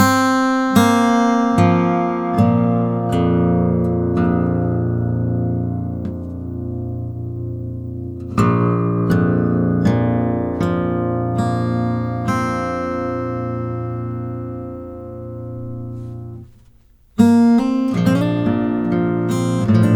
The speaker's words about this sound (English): First, let's just hear the sound of the open strings in this B-flat tuning.